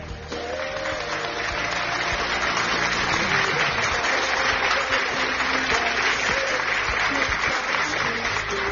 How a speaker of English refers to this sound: Let's put our hands together for Jesus.